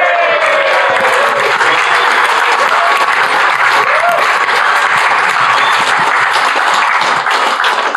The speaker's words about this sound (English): No golf clap today. No golf clap. We're in Manchester. Full round of applause.